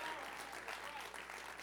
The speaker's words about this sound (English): Come on, if you're excited about the Holy Spirit, you can just clap right now. Thank God.